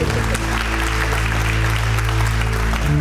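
A crowd applauds steadily for about three seconds, a dense, even patter of many hands at constant loudness, with a low sustained hum or chord underneath and no voices.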